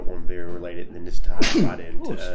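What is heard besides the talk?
sneeze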